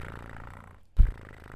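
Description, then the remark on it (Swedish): A person imitates a cat's purr with a low, gravelly rumble that pauses briefly, then returns in a louder, rougher burst before settling back to a steady drone. “Jag vill höra purret.”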